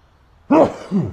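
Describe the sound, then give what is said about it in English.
A single sharp sneeze bursts out after a moment of quiet, followed by a softer, lower exhale trailing off. “Got to sneeze.”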